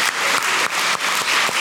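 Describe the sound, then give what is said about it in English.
An audience claps for God, loudly and steadily, a dense wash of many hands with a regular beat of unison claps roughly three times per second; no voices stand out. “Give God a clap for that.”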